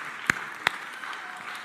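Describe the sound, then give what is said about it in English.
Two sharp handclaps ring out in quick succession, with faint, scattered clapping from an audience lingering quietly in the background. “Pastoral care, yeah, you could clap that.”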